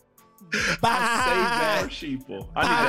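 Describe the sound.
A person imitates a sheep, letting out loud, wavering bleats: a long quivering baa followed by a couple of shorter bursts, with no other sounds around.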